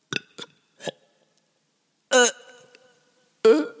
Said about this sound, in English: Sorry, I need to burp.